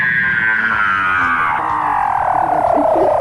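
Weddell seal calls underwater, from a Facebook video shared by the non-profit Ocean Conservation Research: a loud, sustained eerie whistle that glides steadily downward in pitch, layered over low throbbing pulses and chirps, with no talking.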